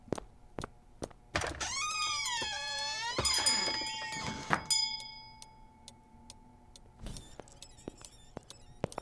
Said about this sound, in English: Was that the door?